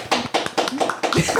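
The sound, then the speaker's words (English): Hands clap in a quick, uneven flurry of sharp, crisp smacks for about a second and a half, fairly loud, with a few faint voiced murmurs mixed in. “Clap it up one more time for you guys, too.”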